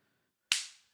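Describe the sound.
One sharp, crisp slap, like a palm smacking a face, sounds on its own after silence and fades quickly with a short trailing hiss. No one speaks.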